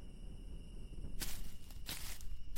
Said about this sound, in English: Footsteps crunched across the campsite so loud it sounded like a Neanderthal could have been dragging his club.